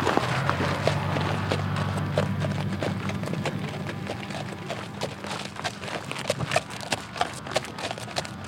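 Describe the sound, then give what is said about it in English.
Horse hooves clip-clop in a steady rhythm, the sharp knocks growing crisper and more distinct toward the end, set against a constant low rumble in the background; horses kept at a prison farm. “As you've seen, we have a lot of horses here.”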